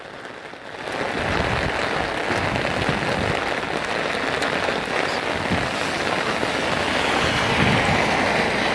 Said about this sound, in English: Oh shit. Fuck, I think I'm gonna have to stop recording. Just so my cell phone doesn't get wet. It's raining a lot.